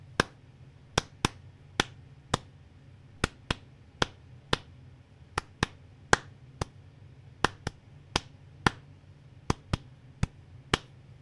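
A steady series of about twenty sharp, crisp hand claps directed toward the walls of a home in an at-home sound ritual, moving clockwise from the front door, in a loose repeating rhythm, some grouped in quick pairs, with no voices and only a faint low hum underneath.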